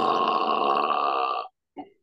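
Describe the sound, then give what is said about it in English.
A long, loud, drawn-out burp rumbles for about a second and a half, then cuts off, followed by a brief vocal sound after a short pause. “I have at least one burp on.”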